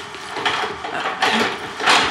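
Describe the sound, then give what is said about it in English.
A door handle is jiggled and rattled against its lock in several quick bursts, a metallic clattering that rises and falls in loudness with no voices over it. “Check the door.”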